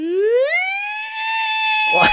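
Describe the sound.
A voice imitates a strange whistle: a single tone swoops upward in pitch, then holds a steady, siren-like note for about two seconds before breaking into a brief breathy burst.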